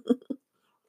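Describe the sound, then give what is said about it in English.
Someone takes a sip of soy milk coffee: two quick, soft gulping swallows in a row, followed by silence. “Maybe I need another little bit of that soy milk and coffee. Hang on, guys. Take a sip with me.”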